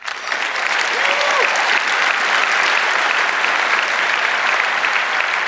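Steady, dense applause from an audience, a continuous crackle of many hands clapping at even loudness throughout, with a faint whistle or brief voice rising near the start.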